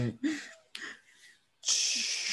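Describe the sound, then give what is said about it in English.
A yawn, drawn-out and breathy, with a few airy gasps and wheezy inhales leading into a louder, hissing exhale at the end. It's fairly quiet, and no one speaks. “Sounds always yawning.”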